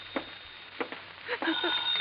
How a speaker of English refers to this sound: Better answer that phone